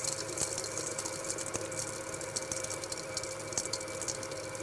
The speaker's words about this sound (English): I don't know if you can hear it, but the ice chunks are kind of tinking off the side of the bowl as it's being whipped into the meat mixture, and we're starting to form this emulsification.